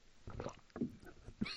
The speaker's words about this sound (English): Excuse me, I got a cough there. Oh goodness.